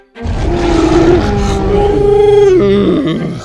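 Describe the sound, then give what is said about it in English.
A deep, sustained dinosaur roar rumbles loudly from dinosaurs looking up from below, its growling tone wavering and rising before trailing off into a rough snarl, lasting a few seconds with no talking. “The dinosaurs down below were looking up at them and roaring.”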